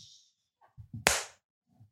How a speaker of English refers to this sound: I'm going to clap.